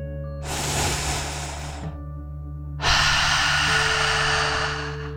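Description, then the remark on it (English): A slow, deep breath drawn in through the nose, then a longer, stronger exhale pushed out through the mouth, clear over a steady low hum. “Deep breath in and out.”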